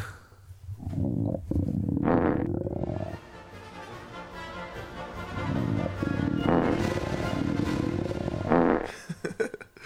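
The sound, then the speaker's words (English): Low stomach rumbling picked up by a microphone: deep, continuous gurgling with a few louder bubbling surges and squeaky bursts, lasting several seconds with no talking over it. “Let's lower the mic to your stomach and have a listen.”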